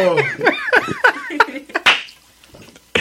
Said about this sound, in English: Yo, you Dominicans clap loud. Yo, bro. Jesus. Nah, that's crazy, bro. You be making sound waves.